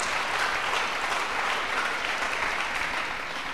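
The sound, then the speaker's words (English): A crowd at a prayer service claps for the Lord for a few seconds, a dense, continuous wash of hand claps from many people, fairly loud and without pauses or speech. “Acclamons pour le Seigneur. Let's clap for the Lord.”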